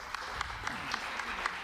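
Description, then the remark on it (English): An audience applauds actors as they are introduced: a dense wash of clapping with a steady, rhythmic beat of sharper claps roughly four times a second, moderately loud throughout. “Give them a round of applause, por favor.”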